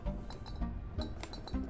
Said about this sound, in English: Yes. Yes, they'll overlook the salt wastes. You can see, without going to the ledge, the thick white clouds, the wisps of salt striking against the glass.